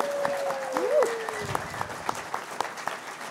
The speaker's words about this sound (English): Let's have a little clap